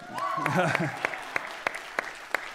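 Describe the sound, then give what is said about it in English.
Sparse, evenly spaced hand claps applauding a volunteer who serves, about seven sharp slaps in a slow steady rhythm, with a brief voice at the start. It sounds like thin applause rather than a full, dense ovation. “If we listed everyone who serves here, we'd be clapping and applauding for a long time.”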